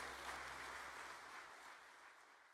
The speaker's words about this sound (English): Let's give our God a hand of applause this morning.